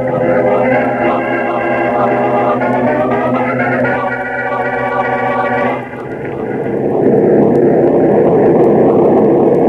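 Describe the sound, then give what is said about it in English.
A loud, steady propeller-plane engine drone of a plane flying to New York fills the scene, its humming tones shifting partway through into a rougher, broader roar, with no voices. “order a plane for New York”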